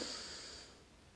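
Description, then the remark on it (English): A single airy sniff of a cup of pumpkin spice coffee with its lid popped up, drawn in through the nose and tapering off over about a second. It's fairly quiet, with no talking. “And he picked up one of the coffees and he popped up the lid and gave it a sniff.”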